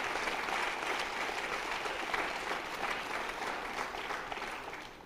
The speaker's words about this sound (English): Come on, clap your hand. I need y'all to greet with me.